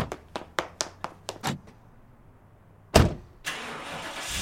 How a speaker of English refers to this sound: Car! Start the engine! But you... Start the engine and I'll run.